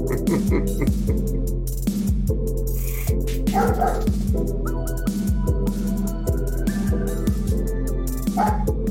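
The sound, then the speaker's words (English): A neighbor's large dog barks deep and loud over and over in a steady, fairly quick rhythm, the repeated woofs filling the whole stretch against a constant background rumble. “Who's got the big ass dog? It's my neighbors.”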